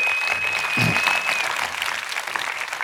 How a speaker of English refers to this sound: One more time, clap your hands to God right there.